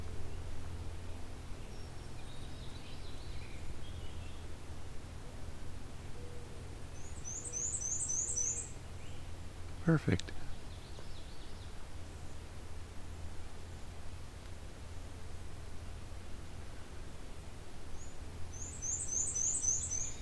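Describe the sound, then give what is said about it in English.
A black-and-white striped, nuthatch-like songbird sings twice, each song a quick series of thin, very high, squeaky paired notes, over steady low rumble from a road with a brief thump in between. “Very stripey. But they act a lot like nuthatches. They climb up and down trunks and branches and go upside down.”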